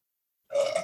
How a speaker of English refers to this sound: Oh, she burped her way out the door. Did you guys hear that? Yeah, it sounded pretty good.